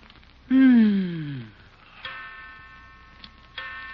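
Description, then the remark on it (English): A clock strikes three times, each resonant chime ringing out about a second and a half apart and slowly decaying, the first strike loudest, with no voices. “Yeah, I know it's 3 o'clock.”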